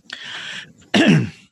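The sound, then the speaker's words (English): Two abrupt coughs, the first rougher and throaty, the second a louder, harsher burst, separated by a brief pause. No talking. “Sorry, I'm coughing there.”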